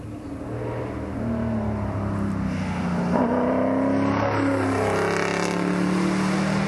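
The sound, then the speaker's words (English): A loud Mustang race car engine roars past, its deep tone rising and shifting as it accelerates hard, with a thick, continuous mechanical drone throughout and no voices. “Mustang. Bit of a point and shoot car. Definitely. Slow in and then on the gas.”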